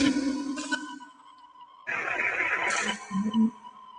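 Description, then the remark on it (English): Steady electronic tones hum at several pitches at once, interrupted midway by a louder, buzzy burst of dense noise, then settling back to a lower sustained drone. No one speaks. “We're going to stop the tones.”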